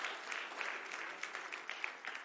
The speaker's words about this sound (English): Let's give our musicians and our praise team a great round of applause.